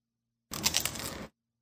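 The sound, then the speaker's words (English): A dense, crackly crunch lasting under a second, a burst of sharp brittle snaps as a frozen fruit roll-up is bitten, with no talking over it. “Did you hear the crunch in there? Did you hear how crunchy that gets?”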